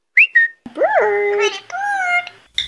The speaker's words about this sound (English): Actually, I think we have a quote-unquote exclusive audio from that security footage of the parrots.